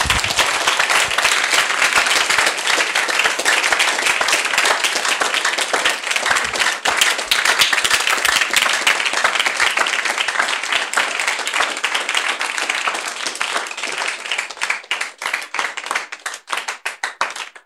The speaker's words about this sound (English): Rise to your feet. Thank you for clapping for me. Now clap for Jesus.